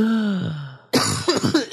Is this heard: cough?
yes